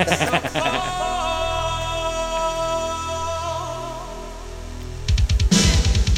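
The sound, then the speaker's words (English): A punchy Roland 909 drum machine beat thumps briefly, drops out under sustained synth chords, then slams back in loud and driving near the end, with no one speaking. “Just toying with our emotions with a 909.”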